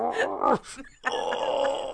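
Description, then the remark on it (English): A voice imitates the straining grunts and groans of a fisherman in a boat hauling in a fish, with a brief pause before a longer strained, breathy effort sound, fairly loud. “They're out in a boat, and every time he'd pull in a fish, and it could be a minnow, he'd be efforting so much.”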